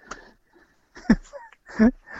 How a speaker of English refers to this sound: See, we're even yawning during this show. Exactly. That's what it's done to me.